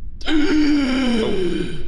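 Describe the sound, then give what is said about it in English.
A loud voice imitates a gasp: one drawn-out, voiced intake that sags downward in pitch like a startled groan, lasting over a second with no other sounds around it. “The moment that you step in front of the creature, you hear a gasp.”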